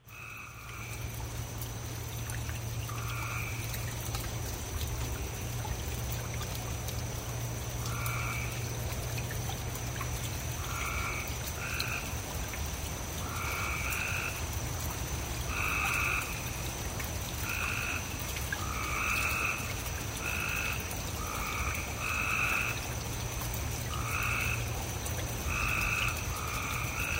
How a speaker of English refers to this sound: And this was just like out in my driveway after the big rain the other day. And the frogs, they were just calling. Yes. That's great. And you live in the city limits? Yes, sir. I'm in the city limits. Those are gray tree frogs.